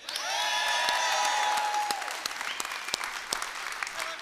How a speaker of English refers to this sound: We, Vintage Church, welcome Aurora Christian School. Just cheer again. Just let them think this is what we do all the time.